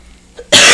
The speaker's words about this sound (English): I'm sorry for coughing, guys. I'm still getting over a cold from this weekend.